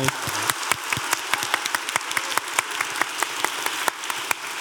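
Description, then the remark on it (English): A room full of people applauds steadily, many hands clapping at once in a dense, sustained patter with sharp individual claps standing out, moderately loud and continuous throughout. “Give her a round of applause, honestly.”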